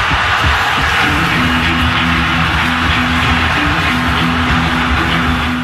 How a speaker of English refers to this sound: Crowd now saluting the Lightning. So that's a couple of recordings from the win of the Stanley Cup championship, Colorado Avalanche,